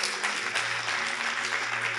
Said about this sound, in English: Now, for those of you who are clapping, let me just explain.